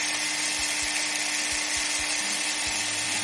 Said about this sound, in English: I reckon it might be the DeWalt 5-amp 18-volt XR brushless combo kit, two-piece.